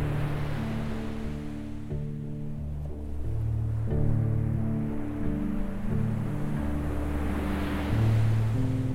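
Ocean waves wash and swell in a steady rush of surf beneath calm, sustained synthesizer chords that shift slowly from one held tone to the next. No voices.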